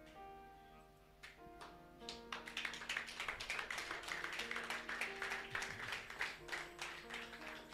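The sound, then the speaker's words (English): A church audience claps steadily and densely for 'mama' during a sermon, starting from about two seconds in, many hands overlapping, over sustained keyboard-like tones. The whole scene is fairly faint. “The way you are clapping, I'm still suspecting you.”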